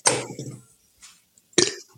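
A low, rumbling burp lasting about half a second, followed by a brief quieter rasp and then a short, sharp throaty burst, all fairly loud with no talking.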